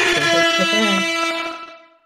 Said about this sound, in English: Air horn abuse. I'd be fine with it if it was always like DJ Z's air horn from fucking The Broman.